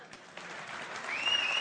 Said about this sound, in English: That's a pitiful clap.